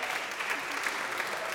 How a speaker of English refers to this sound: Yeah, we got some snaps and claps for that.